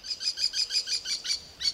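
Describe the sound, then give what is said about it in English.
A northern flicker calls in a rapid, evenly spaced series of bright, high chirps, about eight notes, then a short pause and one final note. Clear, with no talking. “Now they all fly from tree to tree as the northern flicker.”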